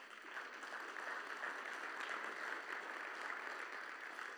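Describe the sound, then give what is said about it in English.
The audience of First Baptist Church applauds steadily during a baptism service, a dense wash of many hands clapping together at an even level for several seconds, with no voices rising above it. “And I applaud for you because it's a relationship.”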